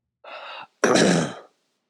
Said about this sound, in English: What should it be? Should it just be me coughing? It could be.